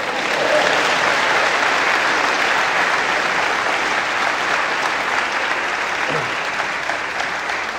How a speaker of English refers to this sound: Clap for her.